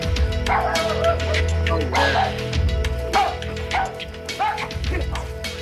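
A dog barks repeatedly in short, excited bursts, mixed with yips and whimpers, over a steady low hum and background noise like a scene from a film.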